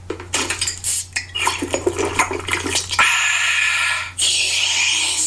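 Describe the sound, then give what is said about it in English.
A Coca-Cola being opened with a few sharp metallic clicks and clinks, then poured in a steady, loud hissing fizz that briefly pauses before foaming on again. “That wasn't sound effects. That was a Coke.”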